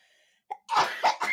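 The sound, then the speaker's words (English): A short catch of breath, then a loud sneeze that bursts out in a few rapid, breathy blasts. No one speaks. “I'm about to sneeze.”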